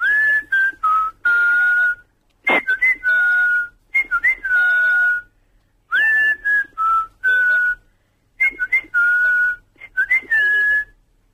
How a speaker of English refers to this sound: There you go. That was spot on. I'd like a clip of that in my folder. Yeah. You whistle like a docker. Like a what? Like a docker. A rough burly man that works on docks.